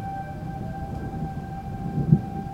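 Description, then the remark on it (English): Outdoor tornado warning sirens in Jackson County drone as a steady, sustained tone, fairly faint over a low rumbling background, with no one speaking. “Those are the sirens.”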